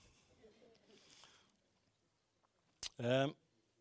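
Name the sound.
turning a page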